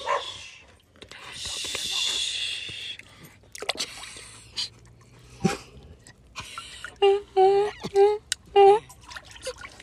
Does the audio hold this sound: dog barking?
yes